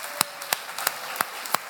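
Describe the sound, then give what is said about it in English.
A round of applause for the children, made of sharp, steady claps, about three per second, with a soft wash of sound between them and no voices. “Let's give our children a round of applause.”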